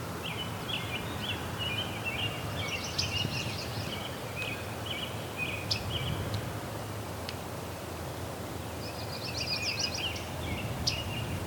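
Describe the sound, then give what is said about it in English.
Soft, sharp tick calls of a myrtle warbler, spaced irregularly over several seconds, set against a constant outdoor hiss and faint chattering of other birds. “It's a myrtle warbler with its tick.”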